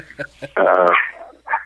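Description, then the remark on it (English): A dog barks: a couple of short yips, then a loud, drawn-out bark and one more brief bark at the end. “Sorry, my dog's working.”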